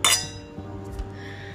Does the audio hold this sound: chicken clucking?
no